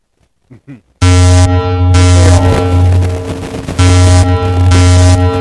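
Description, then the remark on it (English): A harsh, heavily distorted alarm blares at full volume after a few faint clicks, a dense buzzing tone with a shrill upper layer that cuts in and out in repeating bursts. “That is not an alarm anybody wants to hear.”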